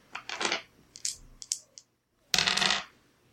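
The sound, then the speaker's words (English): Percentile dice clatter and tumble across a hard surface in a quick burst of rattling clicks, a pause, then a second louder rolling clatter, with no talking; the roll comes up 100. “I'm gonna roll some percentage dice for you.”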